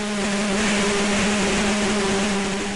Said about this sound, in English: Pouring from the mouth of the newly formed monster is a swarm of angry bees.